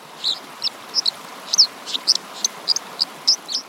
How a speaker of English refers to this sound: Birds that live along rushing streams tend to have really loud songs. So like the dipper, for example, has a really loud song, so you can hear it over the sound of rushing water.